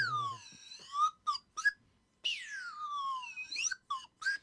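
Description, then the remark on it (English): A slide whistle swoops down in long gliding tones, then chirps in short quick slides up and down, ending with a few brief rising toots, fairly loud with no talking. “and of course, the slide whistle.”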